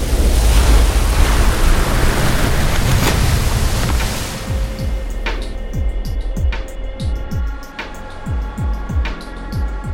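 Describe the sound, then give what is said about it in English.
A loud rush of surging water fills the first half, then thins out into a quieter passage of rhythmic low thuds and a faint tonal hum, with no one speaking. “When I go, it feels like sinking. A tide pulls me from my body.”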